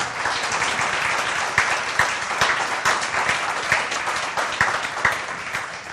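A crowd claps steadily throughout, a dense wash of many overlapping hand claps with a few sharper individual claps popping out, loud and sustained with no one talking.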